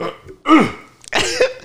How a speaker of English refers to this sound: Let me clear my throat.